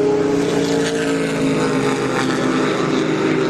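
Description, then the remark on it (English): A loud, sustained engine roar of race cars going very fast holds steady throughout, thick with low droning harmonics and a rough, revving texture. No one speaks. “They're going much too fast.”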